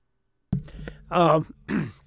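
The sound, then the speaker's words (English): A loud cough breaks the quiet, a rough throaty burst followed by two harsher voiced hacks in quick succession, with no talking around it. “had to cough there.”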